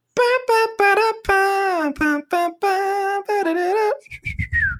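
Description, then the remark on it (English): A voice whistles a short, bouncy TV theme song melody in clear sustained notes, then finishes with a brief high whistle that slides downward. Fairly loud, with no other sounds around it. “Like a little whistle?”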